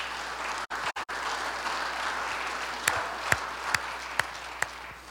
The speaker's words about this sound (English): And I think that deserves a clap of celebration. I think that deserves some praise.